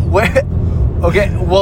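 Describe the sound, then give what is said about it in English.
A steady low rumble of a car engine runs continuously while driving, sitting beneath voices that talk over it in short bursts. “Why are we even in this car?”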